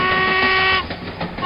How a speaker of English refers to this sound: we're standing on the tracks and we can see the train coming. Choo-choo, right, man?